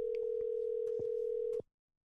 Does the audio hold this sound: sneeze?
no